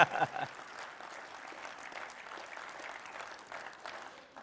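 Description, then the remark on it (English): A crowd applauds steadily, a dense wash of clapping with a few cheers mixed in, holding at an even level for several seconds before beginning to thin out at the end. “Thank you for that overwhelming cheer and response.”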